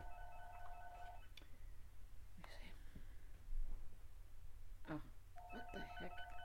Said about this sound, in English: There's a phone. Somebody's. Can you grab that for me?